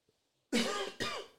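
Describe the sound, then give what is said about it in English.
Two loud, harsh coughs, the first longer and the second quickly following after a brief pause, with no talking. “Still got a cough.”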